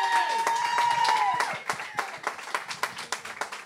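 A crowd bursts into dense applause as an audience member is invited up to the stage for a game, with a sustained whistle or cheer riding over it at first, then the clapping thins into scattered, individual claps that gradually fade.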